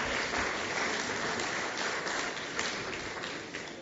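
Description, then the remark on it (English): A crowd applauds steadily for the people who found the loaves of bread, a dense wash of many hands clapping at moderate volume with no voices, thinning slightly toward the end. “Give a round of applause for our finders.”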